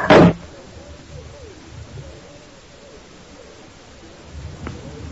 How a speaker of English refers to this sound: The old man opened the door wide.